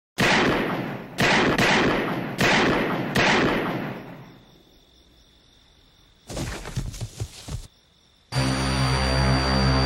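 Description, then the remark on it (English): Four loud, sharp gunshots ring out in quick succession in a film as the character Loomis shoots a man repeatedly, each shot leaving a reverberating tail, followed by a rough burst of noise and then a low, steady droning tone. No one speaks. “And then shoots him 5 more times.”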